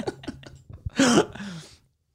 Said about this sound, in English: I'll burp in that microphone. I did it in the sound test.